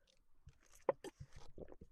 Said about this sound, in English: Sorry guys, I'm just sipping on my peppermint tea. It's gone bloody cold now.